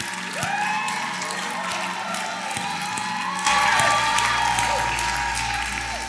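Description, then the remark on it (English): A church audience claps their hands to thank God in sustained, dense applause, with scattered cheers and whoops rising above it. The clapping gets louder partway through and keeps going steadily to the end. “Go ahead, clap your hands and thank Him.”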